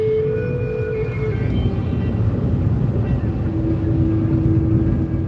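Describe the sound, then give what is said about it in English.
Steady low road rumble inside a moving light blue electric car being driven in the rain, with a faint constant motor whine and a soft wash of rain and tire noise, unbroken throughout. “It's raining outside. I'm driving my electric light blue car.”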